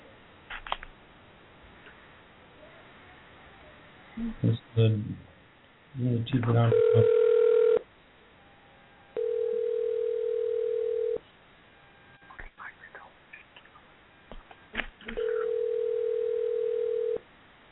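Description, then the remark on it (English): An outgoing phone call from the Soul Kitchen Radio show, trying to reach a guest, rings three times, each ring a steady electronic tone a couple of seconds long, separated by quiet pauses, with a few clicks and handling noises around them. “So let me see if I could get him on the line.”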